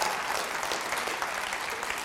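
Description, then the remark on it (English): A crowd claps steadily in sustained, dense applause after being asked to clap if they believe prayer is supernatural, many hands blending into a continuous crackling wash at an even volume with no voices standing out. “Clap your hands if you believe it's supernatural in every way.”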